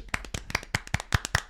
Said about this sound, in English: Should we clap?